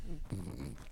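A dog makes low grumbling and whining noises with a snuffly edge, continuing through about a second with no other sounds.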